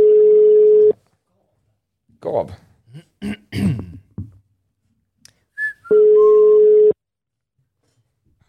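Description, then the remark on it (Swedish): A phone's ringback tone while calling someone's brother sounds twice, each a steady one-second hum roughly five seconds apart, with brief voices and throat noises in the quiet gap between rings. “Vi tar och ringer honom.”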